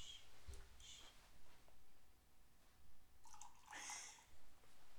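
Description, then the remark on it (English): Liquid is poured close to the microphone, with a few short, splashy, gurgling bursts that swell near the end. No one speaks. “Oh, oh no, that actually, yes, you gotta pour it. Here, pour some of mine. You put it right next to the mic.”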